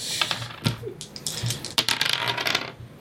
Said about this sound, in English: Right, preparing the dice for. Yeah, I started rattling them too early.